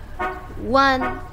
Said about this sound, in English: Hear that car horn beeping?